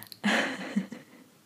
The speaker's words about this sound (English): But anyway, oh my gosh, that is so loud. Okay, so that train is not gonna stop. That's ridiculous.